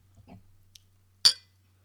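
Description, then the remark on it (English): A single bright clink of glasses of Chardonnay wine touching in a toast, sharp and ringing briefly, preceded by faint murmuring and a small tap, with a low steady hum underneath. “Cheers.”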